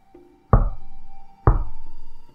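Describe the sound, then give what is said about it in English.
Two loud, hard knocks on a bedroom window, about a second apart, each leaving a brief resonant ring over a quiet, steady tonal drone, with no voices. “Not on the door this time. God help me. It wasn't the door. It was my bedroom window.”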